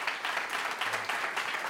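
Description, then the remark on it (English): An audience applauds in a steady, dense wash of clapping that holds at an even, moderate loudness for a couple of seconds, with no voices on top. The audience is clapping to show how many of them voted in the 2018 general election. “How many of you actually voted in the 2018 general election? By applause.”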